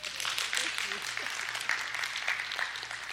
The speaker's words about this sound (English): I just got applause for kissing my wife. That's fantastic.